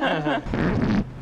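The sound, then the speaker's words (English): A single loud fart lasting about a second: it starts with a buzzing, tonal squeak, then breaks into a raspy, sputtering release before cutting off. No one speaks over it. “No, my fart is not smell.”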